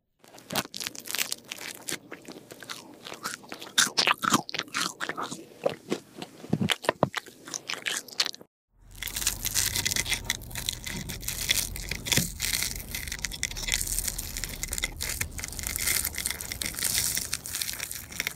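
Close, loud crunching of toast being bitten and chewed, sharp brittle crackles in quick irregular bursts, then a short pause before a denser, steadier stretch of crunching and grinding.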